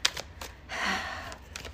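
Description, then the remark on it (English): Tarot cards being shuffled, with a few quick papery flicks, a longer soft riffling rush in the middle, then more light snaps. It's fairly quiet, and no one speaks. “Like, the cards I'm shuffling, like, I'm not enjoying the energy that's being presented in this Virgo season.”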